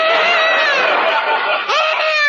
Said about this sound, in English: Oh, boy, that kid sure squawks a lot. So what? Maybe he does squawk, but he's my son and I wouldn't change him for anything. Maybe if you'd change him, he'd stop crying.